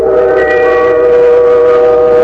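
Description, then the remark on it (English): A train whistle blows one long, steady, chord-like blast in thick fog that fills the whole moment, loud, with a faint rumble of the train beneath it and no voices. “I'll never get you to the railroad station in time.”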